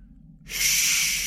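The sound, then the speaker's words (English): After a brief quiet moment with a low background hum, a woman's heavy breath rushes out in one long, airy exhale that stays steady and fairly loud to the end. “The only thing we could hear was her heavy breathing.”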